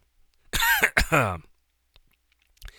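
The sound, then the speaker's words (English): A person gives two loud, raspy bursts of coughing and throat clearing in quick succession, followed by a few faint, scattered noises and quiet. “See, now I'm starting a cough attack.”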